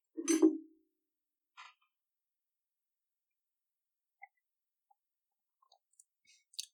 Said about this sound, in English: Let me take a sip of my milk.